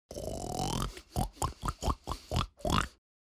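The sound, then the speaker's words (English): A person imitates a pig: a drawn-out rising squeal, then six quick, evenly spaced grunting oinks, ending with one more short squeal. No other speech. “Oink!”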